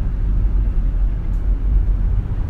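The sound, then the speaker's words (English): A car on the road gives off a steady, heavy low rumble that stays loud and even throughout, with no voices and no distinct rise or fade. “Car, babe. Another car.”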